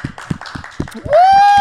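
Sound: clapping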